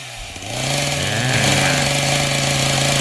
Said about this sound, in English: It's that chainsaw that has always been added to every haunted house that terrifies everyone every time.